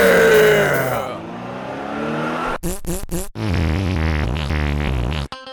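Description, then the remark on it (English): A car engine roars and revs, dropping briefly, then a few sharp bursts before it climbs steadily in pitch as the car accelerates away, loud. “Bro, where'd you get this wicked whip, man?”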